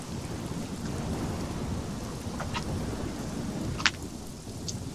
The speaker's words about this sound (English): Doesn't seem like the storm's going to let up anytime soon.